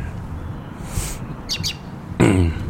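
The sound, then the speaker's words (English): Birds chirp outdoors in the evening in short, high bursts, a few quick calls scattered over a low background rumble, with a louder brief sound near the end. “Your birds in your background.”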